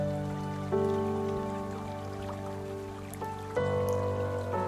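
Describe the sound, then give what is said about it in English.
Soft, continuous water lapping and trickling against the posts of a dock, gentle, with no distinct rhythm, mixed under a steady sustained musical drone whose chords shift twice. “Can you hear the water lapping against the posts?”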